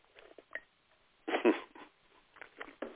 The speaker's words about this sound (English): This is because, now here come a point here, let me sip my coffee right quick.